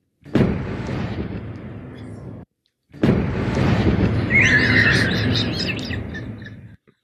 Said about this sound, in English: So we're going to do a little Hunger Games theme here. We're going to play a cannon for every person that Kyle kills.